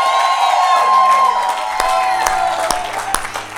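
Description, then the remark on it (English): An audience cheers and applauds to cheer on young leaders, a steady wash of clapping mixed with raised voices and a few high whoops, loud and sustained throughout. “Come on, we cheer you on.”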